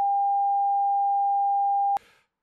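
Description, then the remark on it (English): A single long censor beep: one steady, loud, high-pitched tone holding for about two seconds before cutting off abruptly, followed by a brief burst of faint noise. “The one long beep.”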